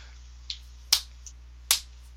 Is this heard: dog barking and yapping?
no